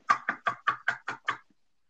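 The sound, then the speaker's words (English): Seven quick knocks on wood in a steady, even rhythm, fairly loud, each a hollow rap that ends abruptly, then silence. “But for this week's purposes, knock on wood if you're with me.”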